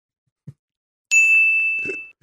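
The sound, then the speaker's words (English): A single bright bell ding rings out with a clear sustained tone that slowly fades, preceded by a brief low thump. “Really loading up on the bell there.”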